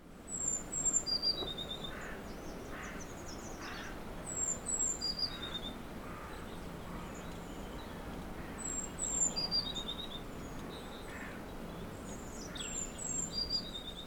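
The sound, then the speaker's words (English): A treecreeper sings thin, high phrases about four times, each two notes followed by a quick descending run, over a steady low background hum. “And finally, the mystery bird, which was doing two notes and then a little run down”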